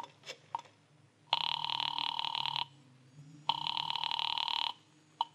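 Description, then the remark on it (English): A telephone rings twice on the line after a number is dialed, two long buzzing rings separated by a pause, sounding thin as if heard through a receiver, with faint clicks before and after. “found a phone. I dialed Bradshaw 7-7-11 and waited.”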